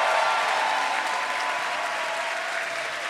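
An audience breaks into sustained applause, a dense, steady wash of clapping hands that holds at an even loudness throughout and fades slightly toward the end, with no voices standing out.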